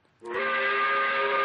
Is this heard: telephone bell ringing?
no